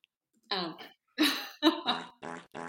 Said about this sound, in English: Oh, why is the fart button stuck on? I didn't do that. I pressed it once.